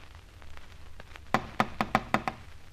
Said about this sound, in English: We've rapped on the door dozens of times. He's not at home.